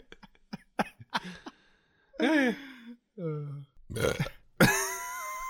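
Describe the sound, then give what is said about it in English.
A series of loud burps, starting with a few short clicky gulps and followed by several long, drawn-out croaking belches with pauses between them. “No, I'm the burper now on the pod.”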